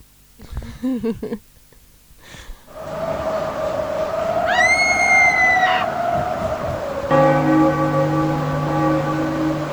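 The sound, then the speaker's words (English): A bell chimes with long, sustained ringing tones over a steady whooshing wind-like noise, after a few brief clattering knocks at the start; a brighter, layered chime rings out near the end. “the tumbleweed and the chimes of the bell and the toilet”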